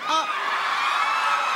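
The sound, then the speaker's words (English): An audience at Comic Con lets out a sustained, steady boo, many voices blending into one dense, droning mass that holds at an even loudness throughout, with a few rising individual voices at the start. “Oh, did we just get booed at Comic Con?”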